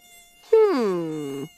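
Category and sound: insect, mosquito buzzing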